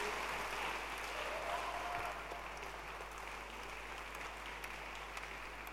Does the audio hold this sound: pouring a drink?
no